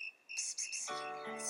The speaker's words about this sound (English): Who else do you think asked the crickets to break into song?